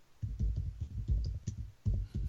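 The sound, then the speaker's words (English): Rapid, heavy keystrokes on a computer keyboard, with forceful thumping clicks coming in uneven bursts and short pauses between them, as someone searches for a website. No one speaks. “Yeah, like clicking that keyboard hard as hell.”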